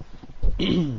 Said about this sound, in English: excuse me if I can clear my throat for a moment.